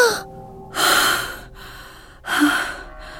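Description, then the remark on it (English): Two sharp, breathy gasps for air from a woman as she suddenly sits up, each a loud sudden intake lasting about half a second, separated by a pause. Prominent, with no talking. “She tries to break away, and suddenly she sits up and gasps for air.”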